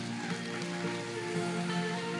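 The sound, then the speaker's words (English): A crowd applauds steadily, a dense, even wash of clapping that holds at the same loudness throughout, with faint sustained tones beneath it and no speech. “Y'all give him a big hand right here for being brave tonight.”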